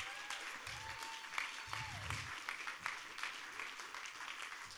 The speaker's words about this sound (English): And I'd also now like to invite our board elders to come up as well. Our board ministry elders. Let's give them a big cheer as they come up.